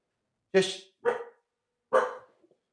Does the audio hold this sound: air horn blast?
no